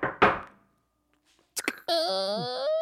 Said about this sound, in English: So you basically knocked on the door. I opened it and I'm like, who are you?